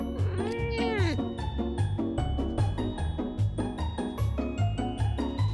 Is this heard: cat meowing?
yes